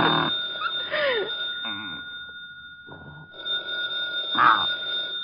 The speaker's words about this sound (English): The phone's ringing.